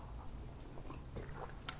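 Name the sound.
sipping coffee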